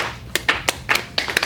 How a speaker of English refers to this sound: That's the clap.